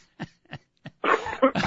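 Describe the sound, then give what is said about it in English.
A brief coughing fit: three short, soft coughs spaced apart, then a louder, harsher burst of rough, rasping coughing to finish, with no speech. “Yeah, sneezing attacks, coughing attacks, unbelievable.”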